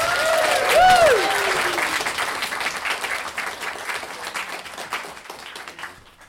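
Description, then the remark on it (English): An audience bursts into dense, steady applause welcoming a storyteller to the stage, with a few whoops and cheers early on, the clapping gradually thinning and fading out after about six seconds. “Round applause, welcome to the stage.”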